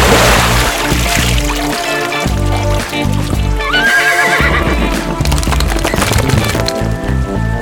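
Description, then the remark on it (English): A horse whinnies loudly while its hooves clop steadily underneath as it emerges from water, shaking the water off its mane, a dense, busy scene with no one talking. “He emerges, shaking the water off his mane hotly.”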